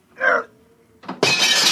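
A short shout-like burst, a brief pause, then a loud crash of glass windows being smashed, breaking into a sustained, bright shattering noise that carries on to the end.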